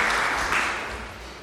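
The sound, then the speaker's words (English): A room full of people claps steadily for a speaker who has just been invited to give a talk on Christianity and education, a dense crackle of many hands that stays fairly loud before easing off slightly toward the end. “Give him a clap again.”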